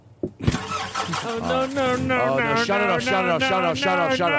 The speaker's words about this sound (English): Well, let me just start it up. If it doesn't seem comfortable, you don't have to take the ride. Let me start the car up. I always talk what I'm going to do.